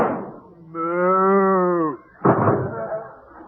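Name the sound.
cow mooing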